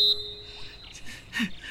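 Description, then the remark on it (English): A whistle gives a sharp, high-pitched blast that settles into a steady, thinner tone for about a second, followed by a couple of soft breathy bursts. “Also, the whistle's back. Yes. Must you? Must I what? With the whistle. I blow the whistle.”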